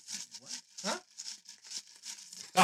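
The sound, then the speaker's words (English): A small, tightly crumpled paper slip drawn from a jar is pried open, giving a run of irregular crinkling crackles and rustles that end in a sharper, louder crackle. “Ooh, this is a tight one. Someone really crumpled this one up.”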